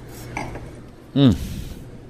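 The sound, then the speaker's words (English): A single light, ringing clink of wine glasses touching in a toast with a 2014 Plumed Blanc white table wine from Arroyo Seco, followed a moment later by a brief, louder voiced sound over a quiet background. “I won't drink alone. Cheers.”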